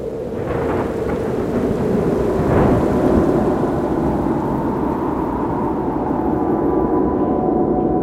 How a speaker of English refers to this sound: Storm came up, all of a sudden.